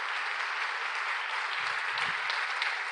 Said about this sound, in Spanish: Es un momento para que le den un aplauso al Señor.